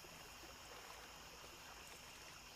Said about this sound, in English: Enjoy these 10 allegedly true scary stories from the lake as you take in the relaxing sounds of water and nature.